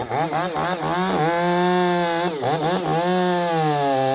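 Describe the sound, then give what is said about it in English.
Chainsaws roar as a wildfire hand crew in California trains to take down a sequoia tree, the engine revving and bogging in uneven surges before settling into a steady, loud whine as it bites through wood. “With the chainsaws running, this team, members of the Pilot Rock Hand Crew, is learning how to climb trees and cut off dead, beetle-ravaged tree limbs, and how to completely take down giant redwood trees”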